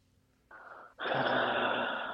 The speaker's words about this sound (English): Why are you breathing like that?